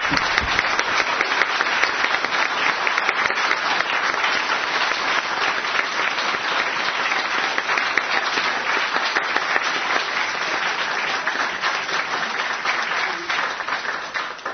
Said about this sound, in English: Well, I've certainly learned a lot. I hope you all have too. Can we give a round of applause for our panelists?